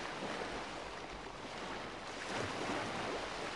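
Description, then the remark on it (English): A steady wash of ocean waves at sunset, a broad hissing roar that swells slightly louder toward the end, with a faint breezy rumble underneath and no voices. “But right now, both of you are just enjoying each other's presence with nothing but the sound of the waves, beautiful sunset, the warmth of the sun.”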